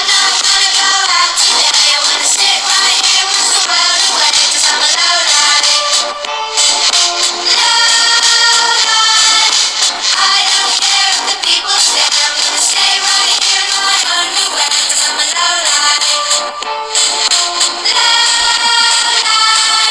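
A loud, continuous electronic song with a techno style plays throughout, bright and busy with layered synth tones and a steady driving feel, no voices heard.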